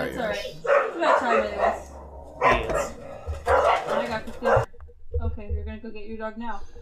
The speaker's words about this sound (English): I might have to go get my dog, as you can hear in the background.